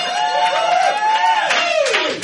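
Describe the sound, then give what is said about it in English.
A live audience bursts into loud whoops and cheers over scattered applause, a dense, continuous crowd roar that swells and holds for a couple of seconds. “At the end of the yeah, clap for that.”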